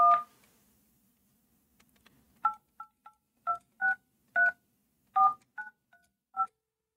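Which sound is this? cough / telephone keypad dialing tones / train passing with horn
telephone keypad dialing tones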